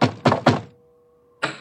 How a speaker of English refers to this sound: Then he put on his coat and knocked at the man and woman's bedroom door.